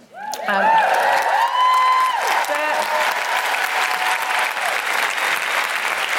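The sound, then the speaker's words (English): Loud, sustained audience applause for the composers of a commissioned musical, with whoops and cheering voices rising over it early on, the clapping continuing as a dense, steady roar to the end. “Big round of applause for all the composers.”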